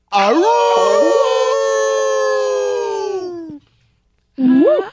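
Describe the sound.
A man loudly imitates a wolf, letting out one long, sustained howl that slides up and slowly trails off, then a brief second howl after a short pause.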